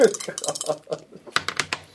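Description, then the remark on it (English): Dice clatter onto a tabletop in a quick burst of sharp clicks and rattles, settling after about a second, with murmuring voices in the background. “I should make a house rule that anytime your dice fall at the table, it's just a failure.”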